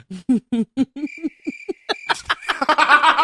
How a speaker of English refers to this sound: And that's for everybody who say I don't give myself crickets. I've been listening. Motherfuckers say I don't give myself crickets. So. Yeah, I got crickets.